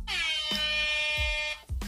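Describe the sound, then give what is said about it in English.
A loud, sustained air horn blast with a rich stack of bright harmonics, holding steady for about a second and a half before cutting off, with low thumping beats underneath. “Let me get my air horn. Pop that air horn off.”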